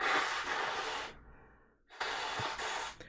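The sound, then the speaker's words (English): Someone blows their nose in two loud, breathy bursts, each about a second long and separated by a short pause, with a rough, hissing rush of air and no talking. “Sneeze might have gone into remission, but I am going to have a blow.”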